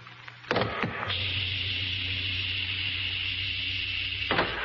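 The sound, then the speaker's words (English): A spacecraft airlock hatch opens at a moon colony, after a space suit is deflated: a couple of sharp clunks give way to a steady, loud hissing whir that holds for about three seconds, then ends with another clunk. No one speaks. “You can open the door. Hatch, contact.”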